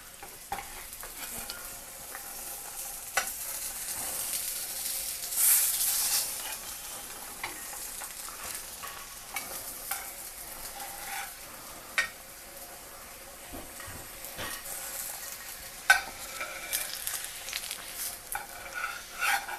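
Food sizzles steadily in a pan with a broad, hissing crackle, broken by several sharp scraping clicks of a spatula working underneath and flipping it. No voices.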